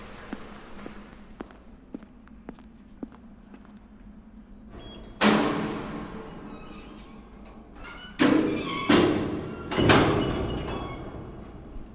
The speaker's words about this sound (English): As you can hear, we've now walked back upstairs and are about to go through the security doors to leave the main data center area.